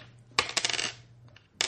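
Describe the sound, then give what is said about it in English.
Two fudge dice and two six-sided dice clatter and tumble across a hard surface in a quick burst of sharp clicks, settling after a moment, followed by one more brief rattle near the end. No one speaks. “All right, yeah, give me a roll, 2 fudge dice and 2 d6.”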